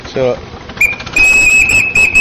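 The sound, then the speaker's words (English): A steam traction engine whistle sounds loudly, one shrill steady blast after a short toot, with a faint murmur of background voices. “But this sort of traction, is this one of the ones that has a whistle? Yes. And yes. Might it just happen to go off like that?”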